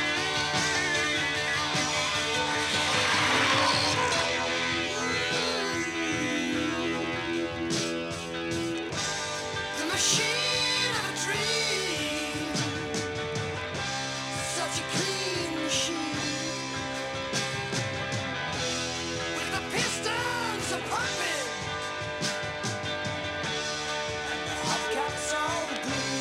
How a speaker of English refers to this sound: this is also his vocals singing this song. So you're going to hear the drummer singing the main vocals of this song.